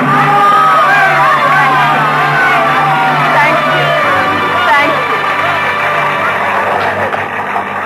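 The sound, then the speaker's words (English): A theatre audience erupts in frenzied applause, a dense, loud, unbroken roar of many people cheering, shouting and whooping throughout, with no pause or single voice standing out. “It was then that I first experienced what will always be to me in all the range of human feelings, the supreme exaltation when you hear the full frenzied applause of an audience for you alone.”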